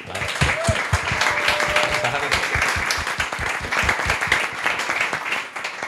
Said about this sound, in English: So big round of applause, please. Oh my God, this applause is amazing. It's going to sound great on the audio, isn't it? I love this.